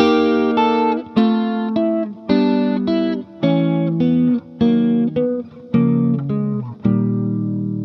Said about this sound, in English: Okay, now let's go back to our major triads of 4 plus 3 and add some passing tones, some changing tones, and substitute tones in between each of the triads. Check this out.